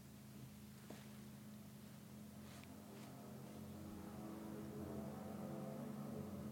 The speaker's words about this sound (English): Those are some loud motors. Look at some of those engines. Maybe it was one. It sounded like multiple, but that might have just been a weird echo or something.